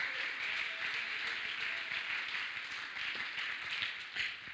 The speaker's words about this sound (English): Come on, let's clap our hands and thank God for what he's doing. Hallelujah.